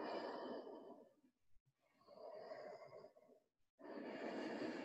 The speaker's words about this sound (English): Seal your lips. And generate the sound of victory. Throat breathing.